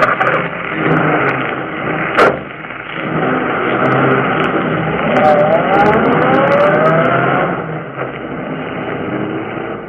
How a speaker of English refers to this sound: The two young criminals fled the scene in the murdered man's automobile.